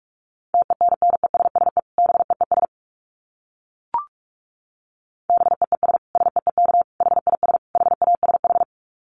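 Rapid Morse code at 45 words per minute, keyed as a steady mid-pitched beep, fast clusters of short dits and longer dahs in two bursts separated by a pause with a single sharp click.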